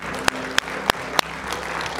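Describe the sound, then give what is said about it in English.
Audience applause at a church morning service welcoming the children: a steady patter of many hands clapping, with a few loud, sharp individual claps standing out in an even rhythm before fading into the general clapping. “Let's give them a hand clap today, please.”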